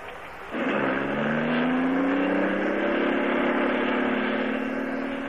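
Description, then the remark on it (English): A car engine running on Atlantic Imperial Gasoline starts up at half a second, then hums steadily and loudly with a slowly rising pitch, like cruising and accelerating along a highway. No voices. “This lets you hum along the highway so nicely.”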